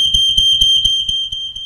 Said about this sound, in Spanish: ¿Usted ha escuchado las alarmas? ¿Suenan una vez? ¿O cómo suenan las alarmas?